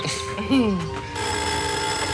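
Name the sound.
telephone ringing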